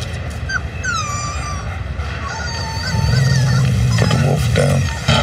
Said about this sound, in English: Oh, it's a puppy! Not a puppy, a wolf.